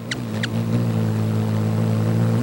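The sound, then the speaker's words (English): Hummingbird wings hum in a steady, low, buzzing drone that holds throughout, with two quick high-pitched chips near the start and no voices. “Their wings might whoosh, but only a hummingbird's hum.”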